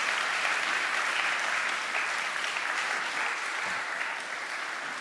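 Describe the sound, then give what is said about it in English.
A steady round of applause from many hands at a church service for two people who have just put a Bible back at the center, dense and even throughout, easing slightly toward the end with no voices over it. “Give them a round of applause, and you can go back and have your...”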